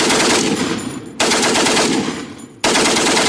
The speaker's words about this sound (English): The French and the British 155th Brigade climbed over the top. Immediately, the Brits took on a shower of lead coming from the Turkish rifles and machine guns.